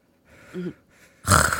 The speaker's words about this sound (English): Oh, wait. That was just me snoring.